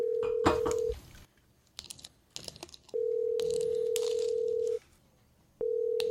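A phone's steady dial tone hums, then a quick burst of keypad button presses as a number is dialed, followed by longer stretches of steady tone. Clear, with no talking.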